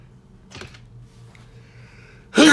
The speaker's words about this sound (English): I'm going to sneeze on it.